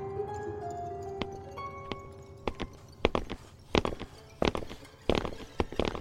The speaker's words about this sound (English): We stood still as the footsteps got closer. The echoes made it impossible to tell how many things were approaching.